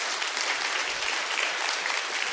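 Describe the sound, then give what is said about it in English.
A crowd claps steadily for the elders, a dense, continuous patter of many hands that holds at an even, fairly loud level throughout without any voices over it. “Can you guys give these a round of applause, these guys?”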